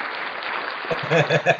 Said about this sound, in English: Applause for the Right Wing Frenchman.